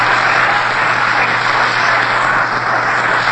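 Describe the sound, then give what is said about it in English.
A large crowd of baseball fans at the Polo Grounds in New York applauds Carl Hubble as he steps up to the plate, a dense wash of clapping that holds at an even loudness throughout, with a low hum underneath and no voices. “Carl Hubble gets a nice round of applause from all of the fans here at the Polo Grounds in New York as he steps up to the plate.”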